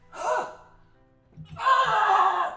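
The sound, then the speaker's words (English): From the other side of a door, strained vocal cries and a grunt, then a few low thumps like hurried running footsteps, followed by a long, loud, wavering scream. “On the other side, grunts, screams, running feet.”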